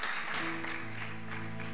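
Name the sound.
audience clapping hands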